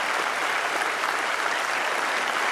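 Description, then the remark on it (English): Older people in an audience applaud steadily, a dense, even wash of many hands clapping at once, loud and sustained for the whole stretch with no pauses or voices rising above it. “Applaud now, older people.”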